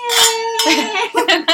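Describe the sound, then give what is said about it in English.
Glasses of Italian wine and apple cider clink together in a toast, leaving a clear, steady ringing tone that lingers for about a second while people giggle and laugh in short bursts over it. “Yes, let's clink. Let's clink!”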